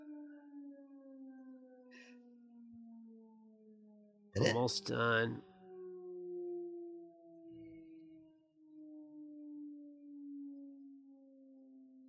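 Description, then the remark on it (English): A town siren, sounded every day at 6 o'clock when the grocery store closes, wails steadily across the whole town for the whole stretch, its pitch sinking very slowly, with a short spoken phrase cutting across it partway through. “Like I'm just waiting for this stupid siren that we have every day at 6 o'clock.”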